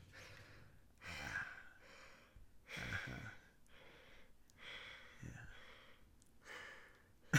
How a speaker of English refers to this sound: Your breathing is making me uncomfortable. Sorry, I have asthma and allergies.